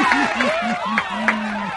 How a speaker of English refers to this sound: There you have it, folks. We got applause. I need a little applause for that. Well done here.